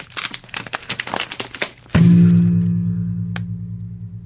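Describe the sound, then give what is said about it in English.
Glass breaking: a rapid flurry of sharp cracks and crackles for about two seconds, then a loud crash that leaves a steady, ringing tone slowly fading, with no voices. “I'm going to walk over and break the glass.”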